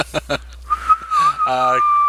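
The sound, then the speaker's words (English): A person whistles one steady, unwavering tone held for over a second, thin, with a few short voiced sounds before it and a voice briefly overlapping its end. “I can whistle, not very well. Like, oh, okay. One tone.”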